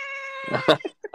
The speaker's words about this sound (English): All right. No. All right, …. Get out that little meow here for the Bengals. We love it.